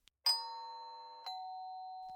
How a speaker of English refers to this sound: He feverishly reaches the doorbell and presses it.